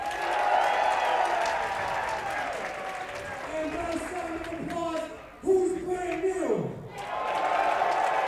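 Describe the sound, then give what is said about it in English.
A large crowd at a Warrior wrestling show roars and cheers steadily while an announcer's amplified voice booms over a PA in the middle, hyping up the crowd and mentioning the main event, stretching out words before the crowd noise swells back up. “… hyping up the crowd, and as you heard him mention, Athena making her Warrior debut tonight in the main event against Thunder Rosa for the Warrior women's title.”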